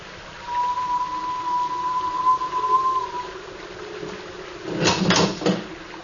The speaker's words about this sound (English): As I ran towards it, my sister's door was unlocked and slowly swung open.